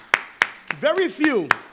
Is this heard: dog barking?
no